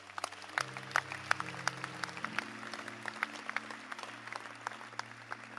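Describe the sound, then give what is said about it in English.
An audience claps their hands steadily for several seconds when the speaker asks them to clap, many hands producing sharp, overlapping claps over a low sustained tone, moderately loud. “Can you clap your hands?”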